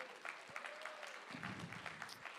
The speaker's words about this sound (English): Yeah, clap.